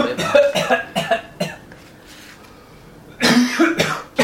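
A man coughs in a quick series of harsh bursts, falls quiet for a moment, then lets out another loud, rough cough.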